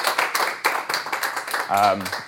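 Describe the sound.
An audience claps steadily for a presentation at a lunchtime lecture, many hands creating a dense, crackling patter throughout, while a single voice speaks briefly over the applause near the end.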